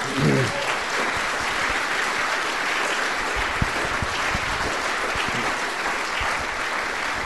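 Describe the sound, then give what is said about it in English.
Sustained applause from an audience, a dense, steady patter of many hands clapping at even loudness for several seconds, with no voices rising above it, honouring a person who led the fight to protect the Great Bear Rainforest. “And for that, I think, a round of applause”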